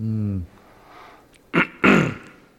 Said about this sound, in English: Still got to work on backing away from the microphone when I clear my throat.